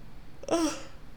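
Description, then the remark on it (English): A single brief, voiced yawn, a breathy open-mouthed sigh with a faint tonal hum that swells and fades within a moment. No talking around it. “I have to yawn again.”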